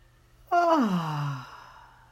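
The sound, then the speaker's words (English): A single long, voiced yawn starts high and slides downward in pitch over about a second, fading into a soft breathy exhale. It is fairly loud, with no talking. “So just take a big yawn.”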